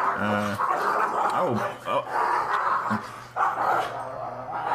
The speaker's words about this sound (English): Speaking of dogs, yeah, which dog is objecting to you?